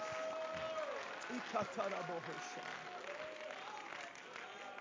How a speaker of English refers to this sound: would you put your hands together and let's give God a hand clap of praise. Clap your hands, all you people, and shout unto God with a voice of triumph. Oh, clap your hands, all you people, and shout unto God with a voice of triumph.